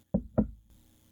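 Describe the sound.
Two soft, low knocks in quick succession, like knuckles rapping gently on a door, followed by quiet room tone. The sound is a person imitating a door knock.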